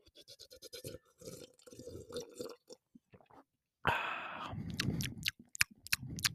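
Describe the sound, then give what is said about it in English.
Wet mouth sounds of someone sipping water: a run of small slurps and swallows, then a louder gulp and more swallowing, with no talking. “Okay, hold on, let me get a little sippy sip of water.”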